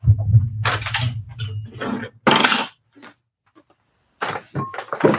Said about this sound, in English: Well, all that banging was the sound of me getting my journal.